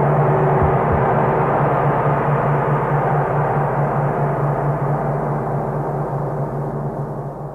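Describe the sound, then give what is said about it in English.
A loud, steady airplane engine roar with a low droning hum, gradually weakening and fading over several seconds as the motor cuts out and the plane goes into a spin, in an Arch Oboler radio drama, with no voices. “The motor, it's cut out. We're in a spin. I can't get out of it.”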